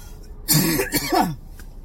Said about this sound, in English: Oh, there goes that cough again. You do that in public out here in the far left Bay Area. People get all weird and shit.